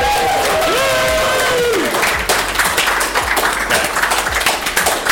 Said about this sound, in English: Let's give them one last loud Austin round of applause.